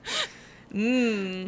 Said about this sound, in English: A shocked, horrified gasp echoed through the classroom.